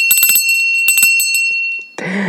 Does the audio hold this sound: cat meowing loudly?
no